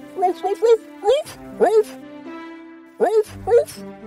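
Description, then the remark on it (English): A human voice imitates a dog named Max barking excitedly to greet an old couple returning home, in a series of short, loud, yelping bursts with brief pauses between clusters. “When the old couple returned home sadly, their dear dog Max barked to greet them.”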